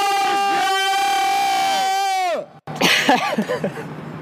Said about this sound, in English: Good echo there. Wonderful. That's brilliant. Beautiful.